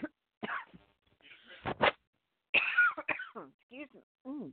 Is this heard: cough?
yes